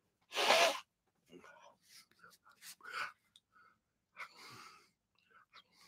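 During a live program, a person blows their nose into a tissue with a loud, rushing blast of air, followed by several softer, breathy snuffles and short snorts over the next few seconds.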